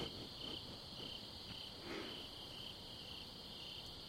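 At night, a steady, high-pitched chorus of crickets trills continuously, with faint low rumbles and occasional soft bumps underneath; no one speaks.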